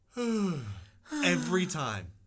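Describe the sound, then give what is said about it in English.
A voice imitates the noise one person always makes after yawning: two drawn-out, breathy vocal sounds with falling and wavering pitch, fairly loud, like an exaggerated groan-sigh after a yawn. “There's one person that bothers me that always yawns, and after they yawn, they go like this.”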